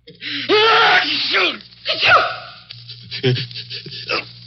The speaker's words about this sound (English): That last sneeze came from but one of 20 million Americans who have colds right now